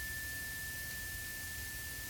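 The third of three cleansing chimes in a guided meditation rings as one steady, sustained high tone that holds evenly for the whole moment, fairly quiet over a soft background hiss and low rumble, with no one talking.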